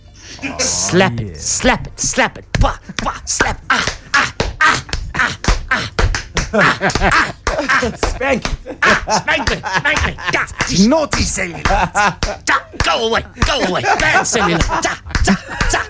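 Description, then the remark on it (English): A hand slaps honey-covered skin over and over in a quick, steady rhythm, fairly loud, with voices and music running underneath throughout. “Then you put the honey on, just the honey. Put it on the area. And for 4 to 7 minutes, you need to slap that area.”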